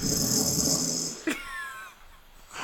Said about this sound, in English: Yeah, it does sound like a bear. My wife has always told me that I snore, and I totally don't believe her. Even though I've recorded him a few different times.